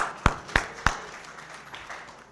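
Three sharp, evenly spaced hand claps ring out in quick succession, then fade into quiet room noise with no one talking, like a brief, scattered round of audience clapping.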